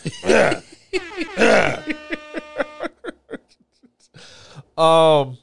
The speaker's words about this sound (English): I had to clear my throat.